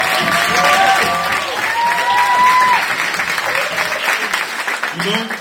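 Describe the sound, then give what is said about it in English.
An audience bursts into sustained, loud applause for the Moravians, dense clapping rolling steadily throughout, with high cheers and whooping voices rising and falling above it. “Clap for the Moravians.”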